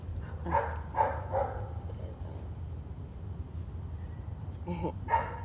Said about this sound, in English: Now you got a dog making all that noise. They about to make me call the people on them again.